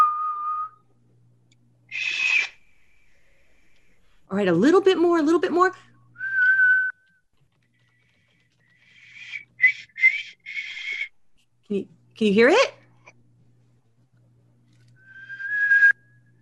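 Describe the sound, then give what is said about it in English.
A young girl plays a tin whistle in short, breathy bursts, with a few steady notes and some shrill, overblown squeaks. An adult voice speaks briefly between the notes. “So I've talked to her about putting all of her fingers on, and don't blow too hard. The whistle works with you.”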